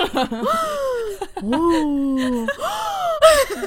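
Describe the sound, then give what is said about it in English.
A voice gasps theatrically three times in a row, each a loud, drawn-out, falling exclamation with sharp breathy intakes between them, exaggerated for comic effect. “You can't even hear your story because I'm gasping the whole time.”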